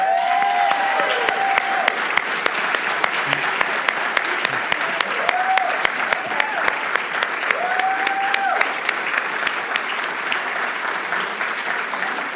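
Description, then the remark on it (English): An audience at a wedding ceremony claps enthusiastically as the newly married couple kiss, a dense, steady wash of many hands applauding for about twelve seconds, with a few whoops and cheers rising briefly above the clapping. “you may kiss while we enthusiastically clap.”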